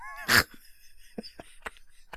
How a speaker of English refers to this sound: Hold on a second. I got barking dogs. It's like I'm a damn retired wrestler. Hey, y'all, shut up in there.